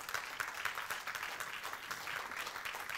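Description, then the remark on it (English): An audience claps together during a sermon about God in a steady, dense wash of overlapping hand claps at an even loudness, with no voices rising above the applause. “If you're going to clap for that, clap for that.”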